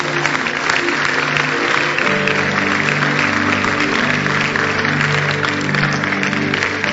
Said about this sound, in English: Clap your hands.